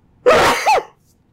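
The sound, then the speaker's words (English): A single loud sneeze, set off by a light: a sudden explosive burst of breath that lasts about half a second and ends with a short voiced tail, with silence before and after. “Oh, you know what? It's this light, probably. It makes me sneeze.”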